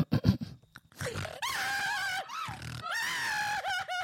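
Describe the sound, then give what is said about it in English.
A voice imitates the anguished cry of a mother pig whose piglet Babe has just been taken away: a few short grunting snorts, then loud, drawn-out wailing squeals with quavering, rising and falling pitch, repeated in two long bursts. “I'm not the greatest actor in the world, but I think if I could play pigs.”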